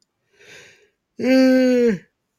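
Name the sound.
a person yawning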